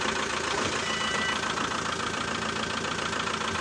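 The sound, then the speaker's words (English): A car engine idles at a raised tick-over as it warms up, a steady, fairly loud mechanical hum with a fast, even rattle running through it. No one speaks. “So you leave that one ticking over, warming up, high tick over.”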